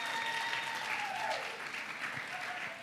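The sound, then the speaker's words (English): Steady audience applause fills the whole stretch, a dense, even patter of many hands clapping at a constant, moderate loudness, with no voices rising above it. “You can clap for that because that is true.”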